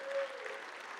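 Steady audience applause, a dense patter of many hands clapping at a fairly even level for about a second, with no voices standing out.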